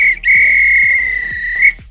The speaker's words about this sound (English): If this were a real bit of extra time, this is when the referee blew the whistle, because it's finished.